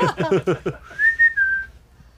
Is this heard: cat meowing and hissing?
no